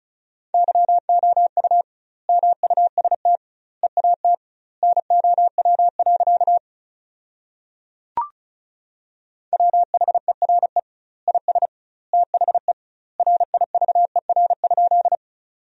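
Fast Morse code at 35 words per minute with doubled word spacing, sending sentences built from the 300 most common words, as a steady mid-pitched tone keyed into rapid bursts of dots and dashes, with a longer pause and a single sharp click midway before the beeping resumes.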